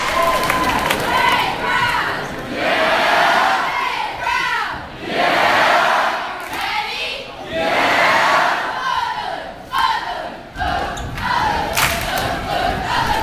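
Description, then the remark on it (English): A large crowd of children cheers and chants loudly, their shouting rising and falling in repeated surging waves that fill the whole recording without a pause. “and they know the words, and they know the actions, and so you kind of start off small, and then they'll just be so excited, and you're really just leading them, but they're really the ones cheering, and they're the ones who are just the force.”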